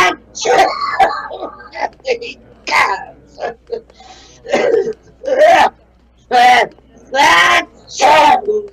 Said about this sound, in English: Can't stand cats. I'm allergic to them. It makes me sneeze. Even the sight of them.